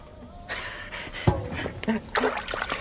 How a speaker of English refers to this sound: I bless you with this water.